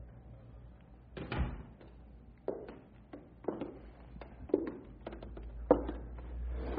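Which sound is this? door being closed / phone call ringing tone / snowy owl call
door being closed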